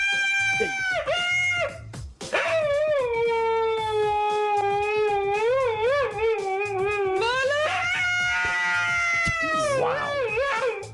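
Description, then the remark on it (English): A husky howls and vocalizes in long, loud, wavering cries, one brief yowl followed by two drawn-out howls that rise and dip in pitch, with no one talking. “Now, as someone who has owned Huskies before, what's the deal here? They like to talk and sing.”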